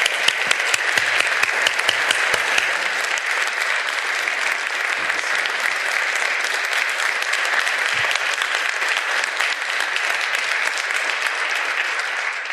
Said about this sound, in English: So we give him a really, really warm round of applause.